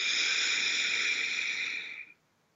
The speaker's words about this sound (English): So to get the most out of our time together today, let's take a breath. Breathe in through your nose, out through your mouth. Like through a straw. Let's take another breath.